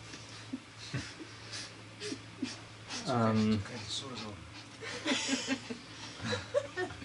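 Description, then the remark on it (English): Henry, a small Pomeranian dog kept as a mascot, breathes heavily in quick, rhythmic pants while people talk and chuckle softly over it. “The heavy breathing is Henry, the little Pomeranian who is our mascot, for those who are not seeing.”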